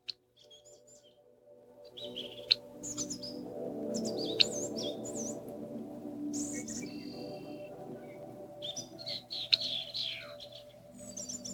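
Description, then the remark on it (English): Colorful small birds, flying overhead and landing on the ground nearby, chirp and tweet in quick, overlapping bursts of high, bright calls over a steady low hum of background noise, with no one speaking. “Colorful small birds fly overhead and land on the ground nearby.”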